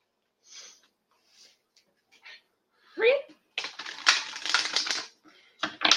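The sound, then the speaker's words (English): A deck of cards is shuffled, a few soft taps and rustles giving way to a dense, rapid riffling flutter lasting over a second, with a brief voice-like squeak just before it. “Think about your question while we shuffle, and I'll give you the cards.”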